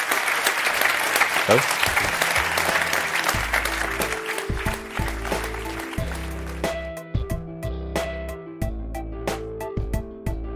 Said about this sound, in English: One last huge round of applause. Naval Ravikant, Balaji Srinivasan.